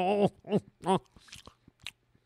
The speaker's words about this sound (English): I know it's gross, people chewing in your ear, right? But it's a cookie. It's one of those Pepperidge Farm Milano, pardon my chewing, mint chocolate cookies.